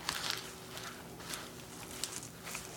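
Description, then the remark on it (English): Soft, irregular rustling and light patters as salad leaves are tossed in batches with a lemony citrus dressing in a bowl, fairly quiet, with a few sharper brushes and clicks and no talking. “I like to do this in batches, so I'm gonna drizzle a little bit. I'm gonna give it a toss.”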